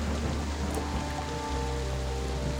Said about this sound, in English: The sound of thunder rolls again. The storm is getting farther away from here, and so is Odessa.